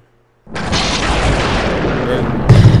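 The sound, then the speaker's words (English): Loud, rapid banging on a children's table for a lightning round, like a frantic drumroll of heavy thumps that starts suddenly and keeps going without a break, swelling even harder near the end. “You're gonna break the fucking children's table.”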